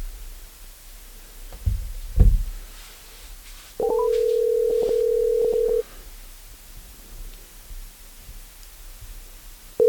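A phone ringback tone on an outgoing call: one steady two-second ring, a long pause, then the next ring just starting. A few handling clicks and rustles come before it, with no voices.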